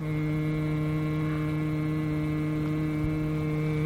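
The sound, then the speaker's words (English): A man hums one steady, tuneless note to a swarm of gnats at a river's edge near the Boise foothills in late afternoon, holding the same low pitch for several seconds without a break. The hum is even, with no talking around it. “The late afternoon sun gives the marsh grass a soft focus, and a blizzard of gnats rises up near the water's edge where a man is humming.”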